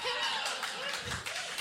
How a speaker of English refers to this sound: Is there clapping for that?